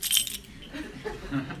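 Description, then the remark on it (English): A brief metallic jangle of keys being thrown toward an audience, bright and jingly, then fading into soft background noise with faint murmuring voices. “I can throw my keys at you.”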